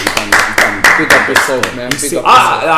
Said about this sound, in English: Do you know what? I'm going to give him a clap, man.